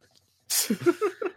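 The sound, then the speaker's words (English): A single sharp, hissy sneeze bursts out after a moment of quiet, followed by a few short, murmured voiced sounds. “and I was just like, God bless you.”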